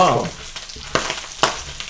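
Vegetables sizzle in a frying pan with a steady crackling hiss, broken by a couple of sharper pops or utensil scrapes, with no talking over it.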